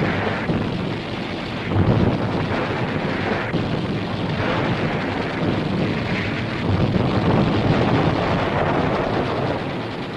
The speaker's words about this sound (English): More landing boats, bringing reinforcements, race through the choppy sea to land on the beachhead as the intensity of the battle increases.